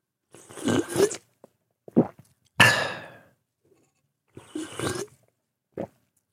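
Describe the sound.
A person imitates a stepfather's loud, noisy slurping sips of coffee: about five airy, sputtering bursts of varying length, the loudest and harshest in the middle, separated by short silences, with no talking.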